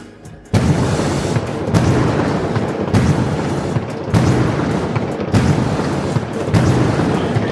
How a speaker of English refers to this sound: If they see a touchdown, fire the cannons, fire the cannons. They want us to fire the cannons.